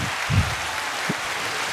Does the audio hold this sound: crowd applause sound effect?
yes